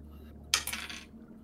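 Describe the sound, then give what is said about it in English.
A short, bright clatter of damage dice being rolled, tumbling across a hard surface, a quick burst of rattling clicks lasting about half a second before settling into a quiet hum. “Okay, so now we'll be rolling damage dice for you.”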